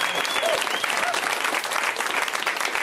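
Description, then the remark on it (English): A comedy show crowd applauds the host steadily for about three seconds, a dense wash of many hands clapping at even loudness, with a couple of faint high whoops or whistles mixed in. “You can clap for me.”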